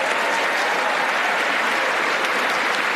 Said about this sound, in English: This is a derogatory clap, make no mistake. Well, obviously, it's a derogatory clap. We know that.